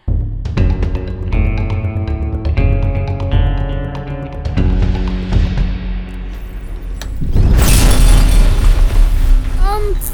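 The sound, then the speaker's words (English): Sustained synthetic tones hum and shift for several seconds, then a loud barrage of crackling sci-fi quantum cannon blasts erupts, slamming into an energy shield with bursts of noise and a brief whooshing chirp. “Quantum cannons deployed.”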